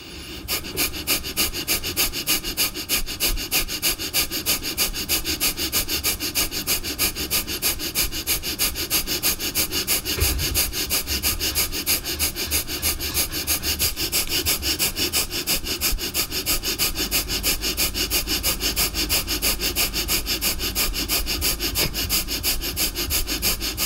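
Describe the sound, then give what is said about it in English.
Rapid, forceful breathing in and out through the nose during a breathing exercise, a steady fast rhythm of sharp sniffs and exhales repeating for the whole stretch, loud with no talking. “And in a moment, we're going to start rapid fire breathing in and out through the nose.”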